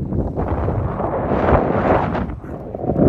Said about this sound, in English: Alright guys, a bit windy, so I'll be quick.